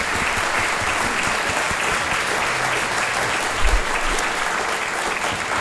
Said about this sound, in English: And I think it would be appropriate right now to ask for a round of applause for all of you that are here. This is amazing to see how many people are here.